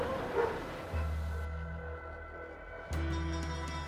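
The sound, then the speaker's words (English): Two dogs bark in a few short bursts as they sprint past along a street, chasing after a cart of the dead, over a steady low rumble, with no one talking. The loudest yelp comes early and the others are spread out and less distinct. “A cold chill crept along his spine, and as he turned back into the street, two dogs sprinted past him, chasing after the dead.”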